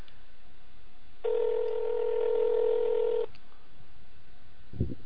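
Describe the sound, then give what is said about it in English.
A telephone tone sounds once as a phone call is placed, a steady, buzzy electronic note held for about two seconds against a quiet hiss, followed by a short clunk near the end. “He better answer.”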